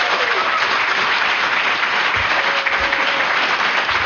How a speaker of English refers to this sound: Naomi Novik is here to join us today. Big round of applause.